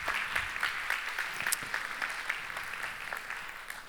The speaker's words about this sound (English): But actually, we have such a great crop of interns in general. This summer, this year, everybody has been so fantastic, and I'm so proud of them. Let's give a round of applause for all of our interns.